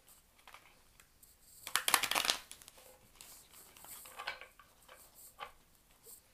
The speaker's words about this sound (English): Okay, I'm going to shuffle the cards a couple more times, and then we're going to get started.